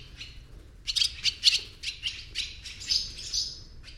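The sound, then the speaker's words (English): Swallows diving about a barn and building beneath the eaves chatter in rapid, high-pitched squeaky bursts, a busy run of short twittering notes repeating over a few seconds, with no voices present. “The swallows dive and chatter about the barn, or squeak and build beneath the eaves.”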